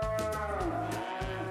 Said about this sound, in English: And anyway, and the cows were getting really close.